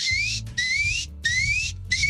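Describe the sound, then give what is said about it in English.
A voice imitates the security alarm of a newly bought vacuum cleaner going off while walking up to the store registers: four repeated, shrill whistled tones, each sliding upward in pitch and separated by brief gaps, over a low rumbling hum. “I bought a new vacuum cleaner, mm-hmm. okay? and it has like an alarm on it, like an alarm on the thing.”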